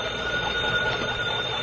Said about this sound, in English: I want to hang up and then use this phone. Now, let's see. I turn this little crank here? Yes, ring it long and loud.